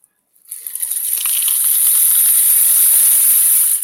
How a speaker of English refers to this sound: Sounds like a rain. And I put on here, this is actually painted tape and it's all oriental designs.